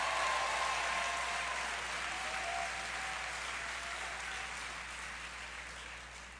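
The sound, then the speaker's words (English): Sustained applause from a large audience at a religious crusade, clapping for Jesus; a dense wash of many hands clapping at once that stays steady and loud before slowly tapering off slightly, with no voices standing out. “Go ahead, give Jesus one more mighty hand clap for that.”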